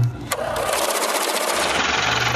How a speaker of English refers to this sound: Counting the Benjamins. That's my money machine, Jonas, counting Fez's money.